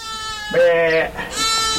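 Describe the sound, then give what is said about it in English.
Herdwick sheep, a hardy breed with thick gray wool, bleat loudly, a wavering, quavering cry that breaks off briefly and then comes again in a second long call. “The breed is also unique in that it's hefted to the land, meaning Herdwicks instinctively stay put wherever they're born and don't wander off like other sheep.”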